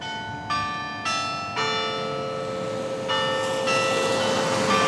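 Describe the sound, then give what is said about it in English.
Clock tower bells chime several times in an uneven sequence, each strike ringing on and overlapping the next, heard from inside the Gore courthouse just in front of the tower, with a steady low background hum and no voices. “The clock tower is just behind the Gore Courthouse, so you can hear the chimes from inside.”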